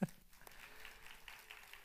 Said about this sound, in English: You feel a little weird because, like, you're clapping for yourself. Play like it's the person beside you.